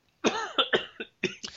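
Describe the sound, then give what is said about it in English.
A loud burst of coughing: several harsh coughs in quick succession with brief gaps, a chesty rasp running through each one, and no talking. “Okay, so you have to edit the show, and you're going to have to take out some of this coughing.”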